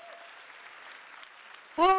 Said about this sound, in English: An applause, yes.